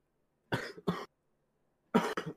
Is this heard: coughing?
yes